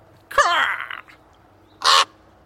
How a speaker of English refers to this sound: Then, walking a few steps further, I heard a familiar sound. Huh? A raven. I wonder if it's the same one as yesterday.